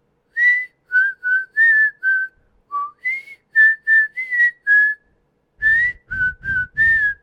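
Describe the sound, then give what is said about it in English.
Someone whistles a short melody mimicking a video game paper girl's tune, a string of clear, pitched notes in a bouncy rhythm, with a brief pause before the tune resumes over faint low rumbling. “the paper girl that drops off the paper every single morning at The Sims, I wonder if my mic will pick up my whistling”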